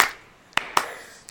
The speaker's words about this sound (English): I get slow claps. Are you guys done?